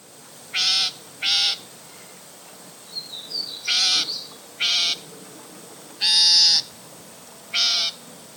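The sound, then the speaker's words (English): A loggerhead shrike gives six harsh, shrill screeching calls in an uneven series, with a few softer chirps partway through, clear over quiet background. “So the common name shrike is actually derivative of the word shriek, and it is due to this bird's shrill call.”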